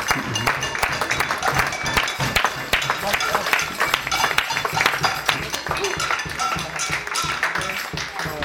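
A crowd applauding steadily, dense overlapping claps forming a continuous crackling wash at an even level throughout, with some murmured voices mixed in underneath.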